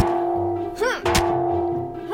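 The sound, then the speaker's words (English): A frying pan smashes into a man's head with one sharp, heavy thunk, smashing it open. A brief warbling swoop comes just before it, over a steady low electronic hum. “Oh, you're smashing it in and there's brains everywhere.”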